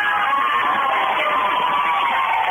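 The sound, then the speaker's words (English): A steady, loud wash of many schoolchildren's voices cheering and shouting together at a caller's school, with a loud radio also playing, heard through a narrow, tinny phone line on a radio phone-in with no pauses for the whole stretch. “He's got a lot of fans in the background.”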